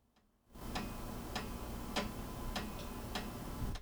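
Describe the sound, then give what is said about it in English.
Water dropping from air conditioners at an apartment building drips onto an air conditioner unit in a steady, even rhythm, about six sharp taps spaced roughly half a second apart over a continuous low background hum, with no talking. “I think they're, oh, you know, we live in an apartment building, so, you know, ACs, they be dropping water, and it's falling on my AC, so, and you just hear that bup, bup, bup, bup, bup, look, listen.”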